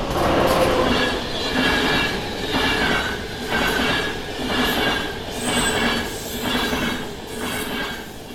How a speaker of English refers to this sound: And yes, somehow a train had gotten into the mix.